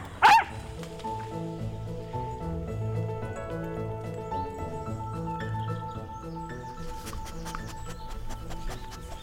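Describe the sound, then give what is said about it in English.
A working truffle-hunting dog barks, opening with one sharp, loud bark and then keeping up a steady run of excited, tonal barks and yelps with no one speaking. “So yes, it's a great relationship to have, a working relationship with our dogs.”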